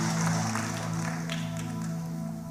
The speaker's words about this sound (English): Can we give the Lord a big clap for his word today as you're being seated in the presence of God?